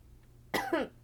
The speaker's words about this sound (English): And now I'm coughing. This is really cute. I bet you tuned in to hear me cough.